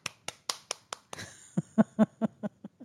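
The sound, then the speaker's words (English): A quick, steady run of about a dozen sharp hand claps with no talking; the later claps sound a little duller and lower than the first few. “Hand clap for that, okay?”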